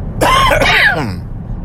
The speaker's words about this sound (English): not yawning, just coughing. Just woke up.